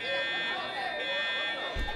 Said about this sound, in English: What's that? Sounds like an alarm. Do they do fire drills in space?